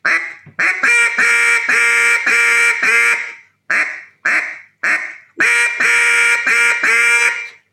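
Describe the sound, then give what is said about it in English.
Loud, raspy duck-call quacks blown into the call, a fast rhythmic run of them, then three short separate honks, then another quick rolling series, with no talking. “Take your quack.”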